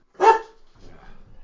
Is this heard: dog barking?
yes